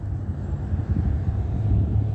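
A steady low rumble of a jet airliner passing overhead, moderately loud and continuous, with a faint wind-like hiss on top and no voices.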